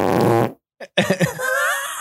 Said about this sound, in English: I took him through the soundboard, hashtag pro soundboard, and he was excited to hear all the fart sounds that we had.